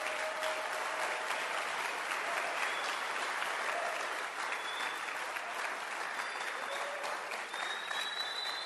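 audience clapping hands

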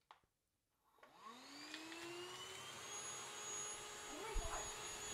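vacuum cleaner running

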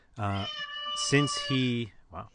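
cat meowing

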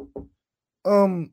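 knocking on a door

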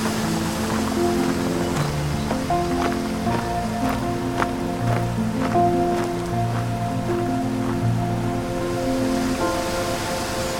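waterfall

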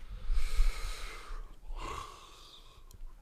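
yawn

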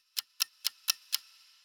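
ticking clock

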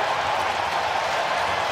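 arena crowd cheering

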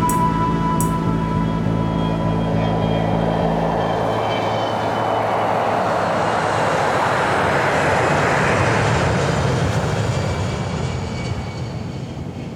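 airplane engines

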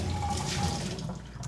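running water

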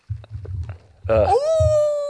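wolf howl sound effect

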